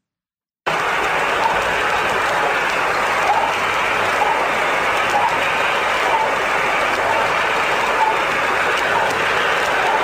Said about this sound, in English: But so this recording, they got some interesting stuff. Claims to be of Sputnik 2, which had Laika the dog on it. And they claim to have recorded the heartbeat of that dog.